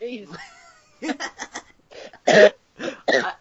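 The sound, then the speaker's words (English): A person coughs in a series of short, dry bursts, then two or three heavier, louder coughs, after a brief vocal sound at the start. “I'm sorry about your cough, dude.”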